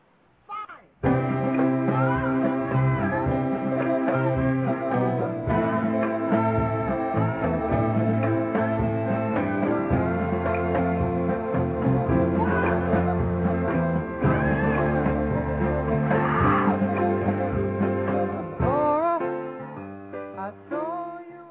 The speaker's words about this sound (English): All right, there was a scream for you, or screams, from ….